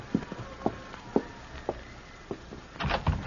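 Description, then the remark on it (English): Slow, evenly spaced footsteps thud across a wooden floor, followed by a louder, rustling rush of sound as a door is pulled open. No one speaks. “And don't open that door so wide, you'll blow the lamp out.”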